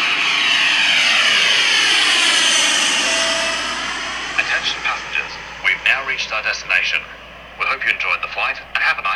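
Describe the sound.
A jet airplane roars loudly as it takes off, its engine whine sweeping and shifting in pitch, then fades beneath bursts of voices talking over the rumble.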